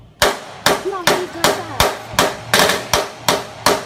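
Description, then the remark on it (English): A rapid, steady string of about eight loud, sharp gunshots, roughly two per second, each a hard crack with a quick decay, with faint voices underneath. “You hitting the gunshots?”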